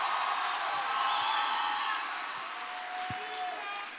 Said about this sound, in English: You know, the way you are clapping hands is as if you are a stranger in this place. Come on, give God a clap offering of praise tonight. Just give God a hand of praise.